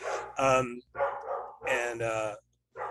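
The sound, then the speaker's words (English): A female dog barks repeatedly: loud, drawn-out yelping barks in a quick series of five or so bursts with brief pauses between them. “Don't worry about my dog. She'll stop barking in like the next 10, 15 minutes.”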